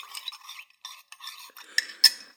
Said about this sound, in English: I do enjoy an iced coffee all year round. I have one right here with me. Let me just take a sip. Some ASMR.